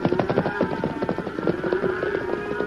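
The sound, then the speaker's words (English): The hooves of the horse Silver clip-clop in a rapid, steady galloping rhythm at night, fairly loud, over a low continuous rumble of background noise, with no talking. “Ride as fast as you can to the rear of the herd.”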